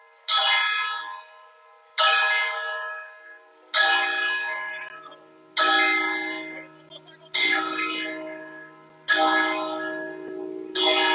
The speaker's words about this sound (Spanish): escucha ahí las campanas.